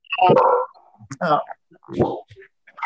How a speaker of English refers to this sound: My dog's about to start barking here.